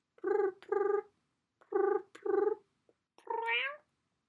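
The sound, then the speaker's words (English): A person imitates a cat purring: five clear bursts of throaty rolled voicing, grouped in pairs with short pauses, the last one longer and sliding upward in pitch. “It's my best cat impression, but I don't do it often because I'm worried I'll...”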